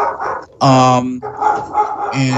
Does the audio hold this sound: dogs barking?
yes